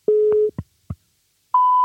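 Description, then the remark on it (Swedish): A telephone line tone as a call is being placed: a steady low electronic beep lasting about half a second, two dull clicks, then a higher steady tone starting up. Clear, with no voices. “Nu ringer jag här.”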